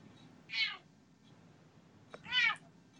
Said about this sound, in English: No, my cat's yelling at me.